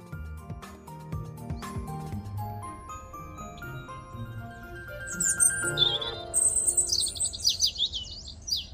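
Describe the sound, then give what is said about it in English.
Birds chirp and sing in bright, rapid trills that burst in partway through and keep going to the end, clear over a soft, low tonal background with no talking. “Some birds are just like that.”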